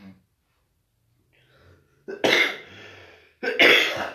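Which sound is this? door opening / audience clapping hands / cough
cough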